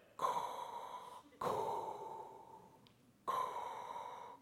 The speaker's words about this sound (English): One of those would probably be the breathing of Darth Vader, right?